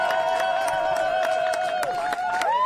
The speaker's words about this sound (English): Why are people cheering him?